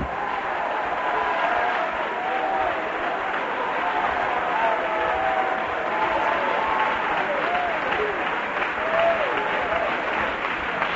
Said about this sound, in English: Would you clap your hands and shout for just a moment?